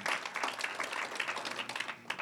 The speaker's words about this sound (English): Huge round of applause also for the worship team pouring it out week after week after week. Can we just appreciate them? Thank them for what they're doing.